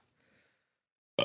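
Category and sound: human body sound, sneeze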